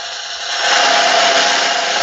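A steady, hissing whir like a hair dryer, played as a makeshift drum roll, swelling louder after a moment and holding on without a break. It is fairly loud, with no voices.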